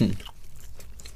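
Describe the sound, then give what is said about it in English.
Chewing of a hard, sugary Mentos mint candy: a brief, heavy crunch at the start, then faint crackling bites trailing off over about a second, with no talking. “Yeah, you do actually have to chew on these a bit, don't you?”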